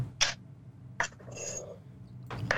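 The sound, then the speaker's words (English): A knife slices peeled onions lengthwise on a cutting board, three crisp, separate strikes spaced unevenly over a couple of seconds, fairly quiet, with a soft hum between them and no talking. “what you chopping up right there”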